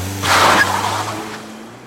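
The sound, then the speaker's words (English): A car engine revs hard with a rushing, roaring burst, then its droning pitch shifts upward as it pulls away quickly, fading slightly over a couple of seconds. “I slammed on the accelerator and sped off before the bunny man could land the blow.”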